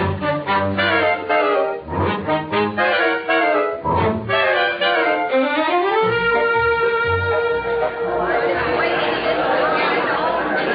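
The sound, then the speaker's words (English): A steady murmur of crowd chatter from a line of people at a ration board seeking B ration books, many overlapping voices talking at once in a continuous, busy babble with no single voice standing out, holding a fairly even loudness throughout. “Look at that crowd.”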